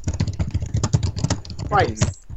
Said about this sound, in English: Who's typing? I was.